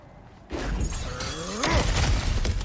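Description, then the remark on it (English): A sudden loud smash as something breaks through an obstacle, with splintering, shattering debris scattering and clattering for a couple of seconds afterward, forceful. “Ah, back to smashing through things for fun and profit.”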